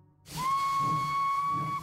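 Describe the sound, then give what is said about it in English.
A steam train whistle sounds as the train leaves a station stop to travel from Los Angeles to San Quentin State Prison: one long, steady, high-pitched blast that starts abruptly and holds, with a breathy hiss of steam underneath and a low rumble throughout. “So after a 40-minute pit stop at the station, the train traveled 400 miles north of Los Angeles to San Quentin State Prison.”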